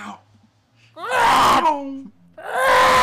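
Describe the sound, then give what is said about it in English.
A voice imitates the shrieking roar of a TIE fighter starfighter: a loud, strained, wavering wail lasting about a second, then a second similar howl right after a brief pause. “Like instead of chiming, it's the TIE fighter scream. But just for the duration of how long a chime was.”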